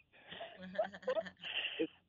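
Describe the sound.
A voice imitates Lamaze breathing, as used during labor, with a short run of rhythmic, breathy huffs and puffs, some with a slight voiced edge, moderately loud.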